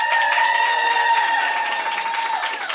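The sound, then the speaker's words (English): An audience at a live show on a West Coast tour breaks into a steady round of applause, clapping to answer who has listened to the show before. The dense clapping stays loud throughout, with some sustained whoops or cheering tones mixed in. “Just out of curiosity, by round of applause, who has listened to our show before?”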